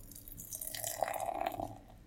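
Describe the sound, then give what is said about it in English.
Golden brown beer being poured into a glass, a steady gurgling stream with a slightly rising, hollow ring, lasting about two seconds before tapering off, with no voices. “So I'm going to pop my top. Oh, my top. And the pour.”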